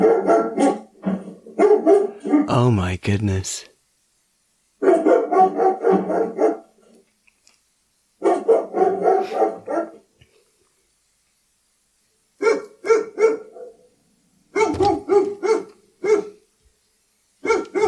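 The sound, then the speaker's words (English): An Alexa smart speaker running a 'Burglar Deterrent' routine, set off in a test at a front door, plays loud, recorded dog barking in irregular bursts of rapid barks separated by short pauses, with one brief spoken exclamation partway through. “Okay. I've stopped Burglar Deterrent.”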